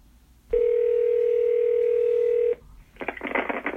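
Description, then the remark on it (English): A loud, steady telephone dial tone hums for about two seconds while a call is placed for a phone interview about a singer's memorabilia, cuts off, and after a short pause a harsher, crackly burst of line noise follows. No one speaks. “So let's get Norm on the phone to chat with him about the … memorabilia he's auctioning off.”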